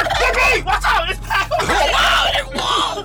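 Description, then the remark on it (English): A turkey gobbles loudly, a continuous run of wobbling, warbling calls that rise and fall for about three seconds with no pauses. “Say, man, we got to put this bird up, man.”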